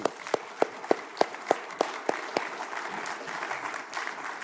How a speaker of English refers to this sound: I know there are some religious traditions that think it's sinful to applaud in church, but we'll just have to get over that, okay? Clap ye your hands, all you peoples.